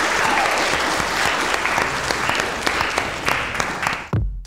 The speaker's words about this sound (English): Okay, can we just get a round of applause for all of them? Thank you.